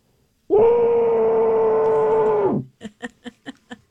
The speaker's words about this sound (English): Now, by the way, I can do this right into the mic because it's the pillow. And if I scream fully loud right now, I mean, honest to goodness, the U.S. Bank would crumble. Here we go. Into the pillow, just like this,